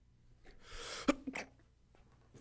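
A single sneeze, fairly loud: a hissy breathy inhale building up, then a sharp burst with a short trailing exhale, over a quiet background.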